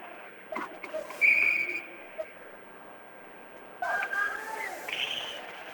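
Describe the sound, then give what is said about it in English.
A referee's whistle at an ice hockey game between the Blue Devils and Tupper Lake gives one short, shrill blast early on, rising over the steady murmur of an arena crowd, with indistinct voices in the background. “And there's a whistle here.”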